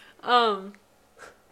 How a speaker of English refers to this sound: She's yawning again. Sorry.